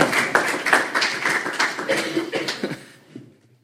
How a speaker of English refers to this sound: So join me a big round of applause.